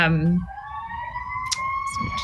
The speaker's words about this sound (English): Our little downtown church has an ambulance going by.